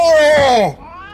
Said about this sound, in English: You pulled out a cat? I didn't mean to pull it out. It clawed at me. A cat? An ordinary house cat?